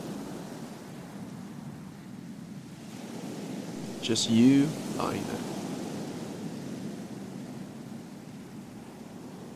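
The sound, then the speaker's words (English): A steady, soft wash of ocean waves rolling onto a beach fills the background, with a calm voice speaking briefly over it near the middle. “With the sound of the waves in the background, imagine you're zooming out on yourself right now.”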